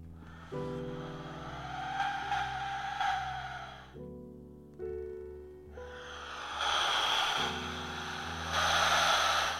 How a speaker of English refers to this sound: That was the Aztec death whistle